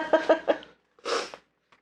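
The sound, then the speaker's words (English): A person sniffling: a few quick, slightly voiced nasal bursts followed by one longer, breathy sniff, then a faint trailing snuffle in otherwise quiet surroundings. “And I've become the sniffliest person in the world.”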